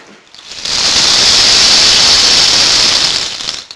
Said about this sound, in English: It was very quiet because it was very early in the morning and he could hear a noise outside. It was raining.